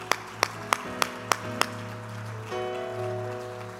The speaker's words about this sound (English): Clap your hands and thank God for it.